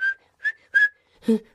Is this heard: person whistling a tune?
yes